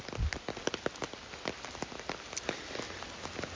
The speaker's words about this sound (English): For me, today, that means walking in the rain.